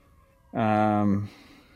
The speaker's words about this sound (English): Is there an ambulance by you?